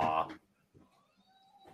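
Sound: cat meowing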